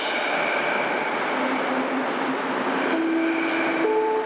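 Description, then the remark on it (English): A train rumbles steadily through a station, a loud continuous roar of wheels with thin, high squealing tones drifting in and shifting toward the end. No one speaks. “The next train to depart is for Richmond Greenhouse.”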